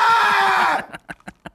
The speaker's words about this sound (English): I would just scream anytime my English would, if I was a foreigner and my English just like, I had a limit. I would just scream.